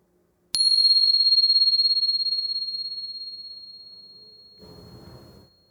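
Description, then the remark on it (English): A single bright meditation bell strike rings out clearly during a guided meditation practice, its pure tone sustaining and slowly fading over several seconds, with a soft muffled rustle near the end as it dies away. “And here comes the bell.”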